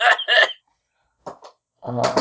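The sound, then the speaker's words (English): A person hacks out two harsh, raspy coughs, then two weaker, shorter ones after a pause, ending in a strained voiced sound. “I thought you were fake coughing, but you were actually just hacking.”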